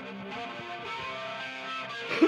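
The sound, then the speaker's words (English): A dense, distorted guitar tone drenched in a heavy phaser sweep, buzzing with rich harmonics at a steady, fairly loud level, with a brief swell near the end and no voices. “That's a huge phaser. Huge phaser. Distortion on a phaser, too.”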